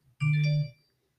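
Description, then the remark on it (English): A single short electronic alert tone, like a phone news notification, rings out for about half a second, loud and steady with a bright, buzzy edge, then cuts off into silence. “News notification.”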